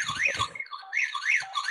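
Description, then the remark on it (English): A home security alarm wails with a rapidly rising and falling electronic tone, cycling over and over at a steady, fairly loud level, with a brief low rumble near the start. “Sorry, guys. My alarm's going off.”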